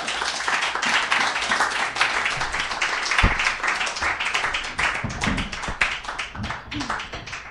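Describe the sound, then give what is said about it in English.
An audience applauds steadily for novelist Kathleen Alcott before she reads from her book, a dense wash of many hands clapping with scattered sharper claps and faint murmurs underneath, sustained at an even level for several seconds. “Let's give a warm round of applause for Kathleen Alcott.”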